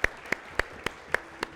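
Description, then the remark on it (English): A church audience claps for the Lord in steady unison, six sharp, evenly spaced claps in quick rhythm over a low background murmur, with no talking. “Give the Lord a clap.”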